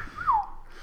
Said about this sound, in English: Someone just whistle at me?